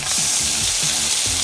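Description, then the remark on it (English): Loud, steady sizzling of food cooking on a hot grill, a dense crackling hiss that fills the whole moment, with faint low clanks or scrapes underneath and no voices. “Brought to you by Hingham Lumber on your station with the sizzle.”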